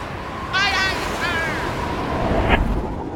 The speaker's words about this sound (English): The wind is picking up. And we're taking on water. I don't know how much longer she'll hold in this squall.